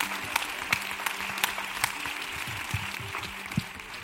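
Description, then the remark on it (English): An audience at an Open House New York panel discussion on Rikers in New York City applauds the panelists steadily, a dense wash of many hands clapping at an even level, with a few sharper, louder claps standing out. No one speaks over it. “For my part, I just want to ask you all to give a big round of applause to all of our panelists.”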